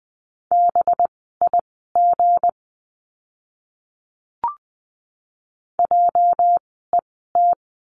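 Morse code sent at 20 words per minute, spelling out practice words in a lesson on the letter J: a steady mid-pitched beep keyed into crisp dots and dashes, two bursts of characters separated by a pause with a single faint click.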